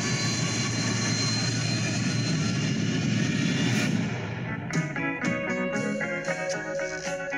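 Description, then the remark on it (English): A jet airplane that has come apart at 30,000 feet is rolled over in flight; its loud, steady engine roar fills the first four seconds, then drops in level as sustained tonal sounds and sharp accents take over. “The plane fell apart at 30,000 feet. We're gonna roll it.”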